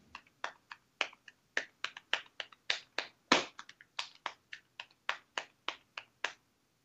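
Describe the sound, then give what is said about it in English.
A drummer's hands tap out a quick paradiddle-style drum rudiment on his lap, about twenty crisp slaps in a steady, slightly accented rhythm, with no talking over them. “What can you tap out some paradiddles or any of that stuff on the chair?”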